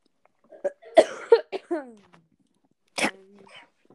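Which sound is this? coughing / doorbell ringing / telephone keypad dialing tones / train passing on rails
coughing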